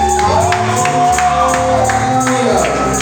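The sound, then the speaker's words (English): A loud crowd shouts and cheers while hands clap in a steady rhythm, sustained voices ringing over the beat throughout the few seconds. “you want to shout, you want to clap your hands, you want to shout, you want to clap your hands, you want to shout.”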